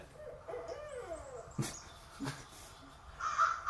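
Several bird calls, hooting and cawing in short bursts, rising and falling, with a sharper, louder call near the end and no talking.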